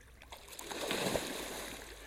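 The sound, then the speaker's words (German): A paddle churns lake water in a steady, swirling slosh, with soft splashes and gurgles rising and falling over two seconds, moderately loud. “Wie ein Koch rühren mit Paddel, was ist das im See?”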